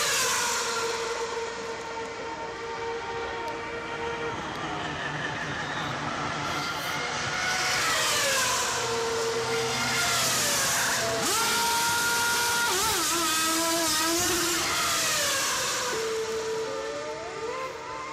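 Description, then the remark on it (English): Loud, continuous roar of a racing engine, its pitch sweeping up and down as it revs, mixed with busy mechanical noise of a pit crew servicing the car in under five seconds, with no voices. “How many people are necessary for just one car, one driver, to get back into the race?”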